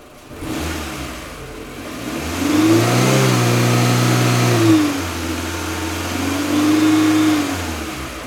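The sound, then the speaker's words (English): A Chevy Impala's engine revs and accelerates, its pitch climbing in two loud surges as it shifts gears and drives off, heading south, with no voices. “The pair took off in the Impala, headed south toward the state line.”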